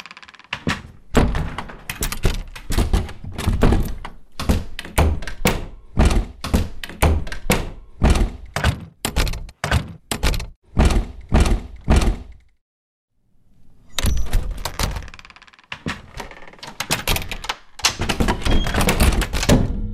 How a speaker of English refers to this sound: It has a finality to it, and when it's shut and we tap it, it's still fairly hollow. So I'm going to show you three different doors and how they sound differently. A big deal is how doors sound when they shut.